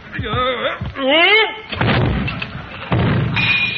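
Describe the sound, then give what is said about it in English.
Straining, groaning voices as people try to lift a bust of Caesar back onto its pedestal give way to the heavy bust crashing down with a deep, booming thud, followed moments later by a second rumbling impact. “Set Caesar up in the next alley. Mr. Conklin's got another shot coming.”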